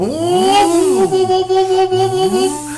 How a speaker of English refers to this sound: Because I'm just gunning it, dude. It's the work truck.